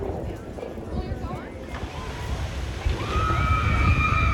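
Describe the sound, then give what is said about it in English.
Continuous sloshing and splashing of water as log flume boats at the Splash Mountain ride in Frontierland churn through a channel heading down Chicopin Hill, building slightly louder toward the end, with indistinct crowd voices and outdoor bustle underneath. “Now we're here at Splash Mountain. The boats are heading down Chicopin Hill”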